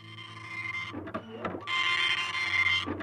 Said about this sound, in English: Down in North Carolina, a printer buzzed. That was the start of a comeback in North Carolina by Ronald Reagan facing Gerald Ford.